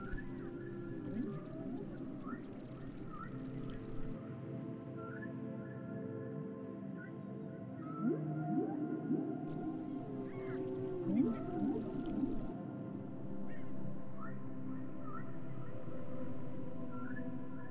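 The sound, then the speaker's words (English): A pod of whales calls underwater, overlapping whistles, moans and squeaks rising and falling over a steady low murmur, growing busier and louder toward the middle, with no voices. “Calling these beings now, and a great pod of whales begins to appear.”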